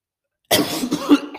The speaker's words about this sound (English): I don't know what that was. I think it was like a sneeze and a cough and a burp.